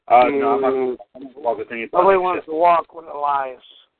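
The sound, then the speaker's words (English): A person mimics a bird with a string of loud squawking, cooing vocal bursts, in several uneven pulses over about four seconds. “I want to walk with the animals. Talk with the animals. Okay. We can squawk.”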